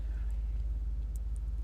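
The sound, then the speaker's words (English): The engine of a big diesel car parking alongside runs steadily, a deep, continuous low rumble with no breaks, heard alone without any talking. “It's a big diesel, so it's noisy, obviously, because they have to be noisy for some reason.”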